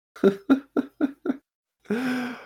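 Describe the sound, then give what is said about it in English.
Five short, evenly spaced breathy vocal bursts lead into a long, drawn-out voiced yawn that holds a steady low pitch before cutting off. No words are spoken. “Excuse me for yawning.”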